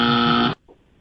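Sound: game show buzzer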